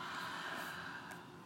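A steady, airy breath drawn in through the nose, fairly soft, a continuous hiss lasting about a second and a half with no talking.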